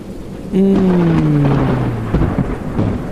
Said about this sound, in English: And then a storm rolls in. And you know what? It's warm out. So we like the storm. I just got a good sweat. So this storm feels good to me.